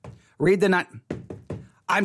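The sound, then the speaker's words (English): A handful of solid knocks, like rapping on a door, land in an uneven rhythm, mixed with short bursts of voiced vocal sound. “If you don't, I'm going to show up at your door. I'm not going to nail anything to your door. I'm just going to sit here and do this.”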